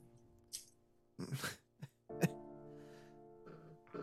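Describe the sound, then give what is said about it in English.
A woman coughs hard: a few deep, harsh coughs come in uneven bursts, with a strained, throaty voiced sound stretching between them, fairly quiet. “She begins coughing hard, and you can hear it's deep in her now.”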